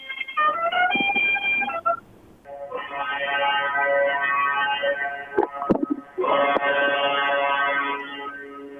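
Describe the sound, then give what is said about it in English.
A boat horn blares in three long, loud blasts with short gaps between them. The first blast is briefer, and the later two drone steadily for several seconds with no voices. “Boat horn.”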